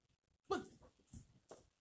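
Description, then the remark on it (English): A dog shifts around while settling into a spot to sit in an apartment, making a few short, soft snuffling and whining noises over a couple of seconds, with no one talking. “And my dog doesn't know which spot to go up to.”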